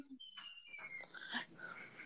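A pit bull lets out a thin, high, drawn-out husky-like howl with wavering, falling pitch, heard faintly and alone for about two seconds.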